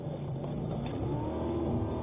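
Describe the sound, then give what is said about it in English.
A steady, low engine rumble drones continuously for a couple of seconds from a big truck in a played video as it tries to ram another vehicle, running at a constant pace with no voices over it, slightly muffled as if from a recording. “And that's a big ass truck.”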